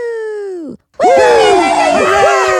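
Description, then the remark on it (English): A woman cheering for herself after her first orgasm with a vibrator lets out a long, loud whoop that slides down in pitch, pauses briefly, then bursts into a stretch of excited, warbling shrieks and hollers of celebration. “That was all me cheering for myself.”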